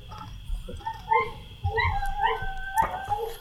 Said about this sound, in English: Some loud dogs. It's time to sing the song of our people. Poodles.